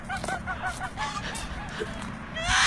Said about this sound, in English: Oh, what am I hearing squawking in the background? That's the fox.